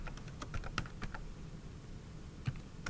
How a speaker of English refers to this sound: Typing with one hand.